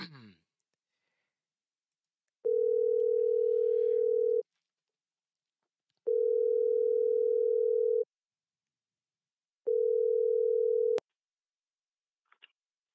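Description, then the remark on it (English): A phone line rings out as the host calls a caller back, in three long, steady, mid-pitched tones, each about two seconds with short silent gaps between, after a brief breath at the start and ending with a faint click. “So let's go ahead and give my man a call back.”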